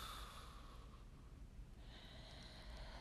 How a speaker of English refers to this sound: And so as I begin this prayer, I take in a nice deep breath, knowing that I'm breathing in the breath of God, and I exhale everything that has come before this very moment.